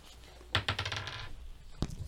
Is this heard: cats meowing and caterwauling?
no